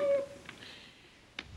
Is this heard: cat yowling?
yes